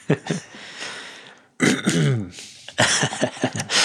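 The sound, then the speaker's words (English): Repeated throat clearing in three rough bursts: a raspy scrape, a short pause, then a louder gravelly clearing with a voiced, groaning pitch, followed by more harsh, choppy rasps. “This throat clearing brought to you by...”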